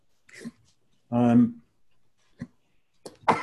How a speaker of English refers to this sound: There, you don't have to worry. I sneezed into my elbow, so you guys are fine.